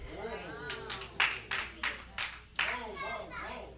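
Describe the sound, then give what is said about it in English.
A baby boy claps his hands in a few uneven, sharp slaps while making babbling vocal sounds, with soft child voices throughout. “The baby's clapping.”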